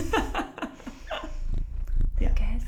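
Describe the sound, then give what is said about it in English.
A cat purrs while rubbing up against the microphone, a low rumbling mixed with soft rubbing and bumping noises, with light laughter or breathy sounds. “You can hear purring.”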